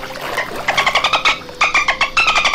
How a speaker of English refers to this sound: Now here's a dolphin.